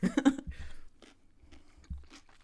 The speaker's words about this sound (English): if you want to chew, just chew right into that mic. Oh, sorry. No, I'm just kidding. It's good ASMR.